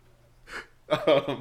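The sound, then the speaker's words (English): A breathy, airy exhale close to the microphone, followed by a louder, raspy, voiced breath or gasp, heard up close with no other sounds. “Creepy breathing into the mic.”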